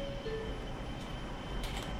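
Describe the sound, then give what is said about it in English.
A steady, droning rumble of a Manhattan-bound subway train in motion, with the next stop Norwood Avenue, and a couple of brief, hissing metallic bursts toward the end and no talking. “This is Manhattan bound to stop the train.”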